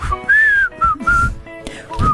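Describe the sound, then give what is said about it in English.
A person whistles a short tune right into the microphone, the bright tone gliding between several held notes in quick phrases, loud and breathy with no one talking. “No, but I can whistle tunes.”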